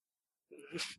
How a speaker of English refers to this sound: There's a passive-aggressive sneeze you hear.